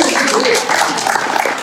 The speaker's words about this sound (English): Very happy to be here together, be back in person, praise the Lord. Round of applause for that.